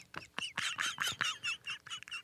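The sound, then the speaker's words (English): A voice mimics a bird with a quick run of chirpy, fluttering squeaks, about ten short bursts in a steady, agitated rhythm, fairly loud with no other talking, imitating a chest beating fast like a bird under a shirt from bird flu. “They said when you get bird flu, your chest start beating real fast, like it's a bird under your shirt.”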